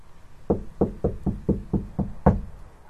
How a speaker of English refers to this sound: He went back to the house and knocked on the door again.